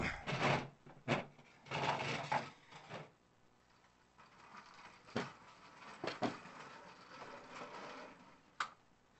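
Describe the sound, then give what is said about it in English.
Rolling, rumbling friction noises with creaks and knocks come in uneven bursts as a chair is wheeled and bumped along into the room, with a few sharp clacks and quieter scraping between. “You rolling the chair in here?”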